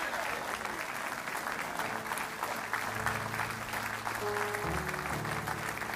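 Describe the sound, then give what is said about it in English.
A large audience stands and applauds steadily for the full six seconds as a clap offering to Almighty God in support of Israel, a dense, even wash of clapping with organ or keyboard chords sustained underneath. “Somebody ought to stand to their feet and give Almighty God a great big clap offering and say, we are standing with the nation of Israel.”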